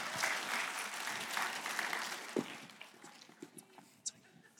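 audience clapping

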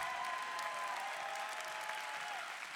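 audience clapping hands

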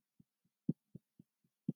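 heartbeat

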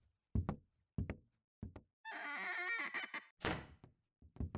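door being opened

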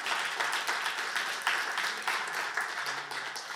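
audience clapping

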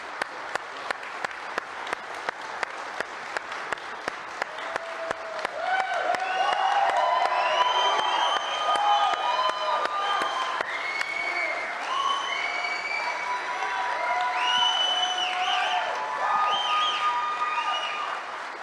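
audience applauding and cheering

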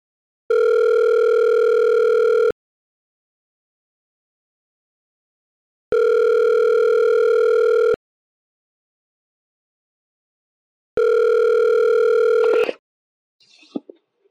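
telephone tone

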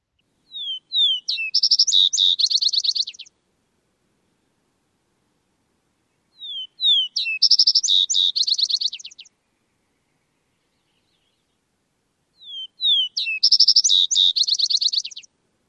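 vesper sparrow song

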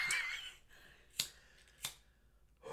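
cigarette lighter being flicked

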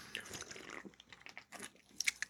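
sipping soda

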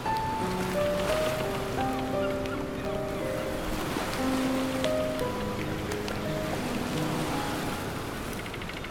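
rain shower

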